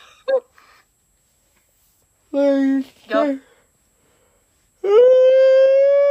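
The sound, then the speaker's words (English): A voice imitates a whale call: two short, moaning tones, then a longer cry that rises and holds steady. It is loud, with quiet gaps between the sounds. “I'm a whale. There goes my eardrums.”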